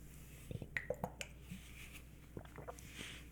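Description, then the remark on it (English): Someone takes a drink of water: a quick run of soft, wet sips and clicks, a short pause, then a few quieter gulping swallows. No one speaks. “Sorry, I had to take a drink of water there.”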